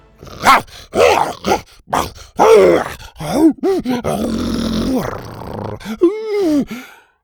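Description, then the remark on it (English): Loud, angry growls from the dinosaur Buck, scolding a companion at the end of an obstacle, come in a rapid string of rough, grunting bursts whose pitch rises and falls, then stretch into a longer rumbling snarl and a final warbling growl. “When they reached the end of the first obstacle, Buck took a second to chew him out with angry growls.”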